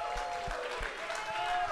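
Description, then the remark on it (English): A crowd claps and cheers in steady, dense applause that holds at an even level, with some voices murmuring underneath. “Oh, round of applause.”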